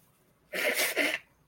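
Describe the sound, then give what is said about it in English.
A single loud cough bursts out in two quick harsh pulses lasting under a second, with no talking around it and quiet before and after. “If my nose isn't running, I'm coughing.”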